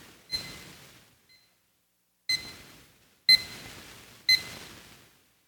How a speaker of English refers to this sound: Alarm number two, wake up.